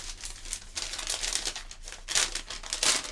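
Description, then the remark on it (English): Paper crinkles and crumples in a series of irregular, crackly bursts, growing louder toward the end, with no voices over it. “As you laugh at me. You and this paper.”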